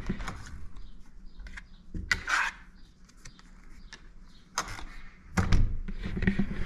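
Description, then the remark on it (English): A hotel room door, room 308 at a hotel in York Beach, being unlocked with a key card: a series of sharp clicks and latch rattles, then a heavier thunk as the door handle gives and the door opens. No one speaks. “We had problems with this earlier. We actually had to go back down to reception to get new keys. It worked.”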